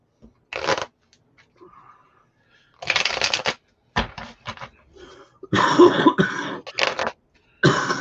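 Riffle shuffles of a deck of cards, several quick bursts of flapping, whirring card noise separated by short pauses, with a soft cough or throat-clear in between.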